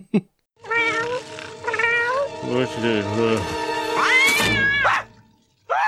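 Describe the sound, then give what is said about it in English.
A cat meows loudly and insistently for breakfast in a long, drawn-out run of calls that rise and fall in pitch, nearly continuous for several seconds, with a short chirp at the very end. “But yeah, basically the cat was like, excuse me, breakfast time?”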